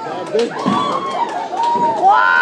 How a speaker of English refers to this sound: Don't scream. Too late, I already did.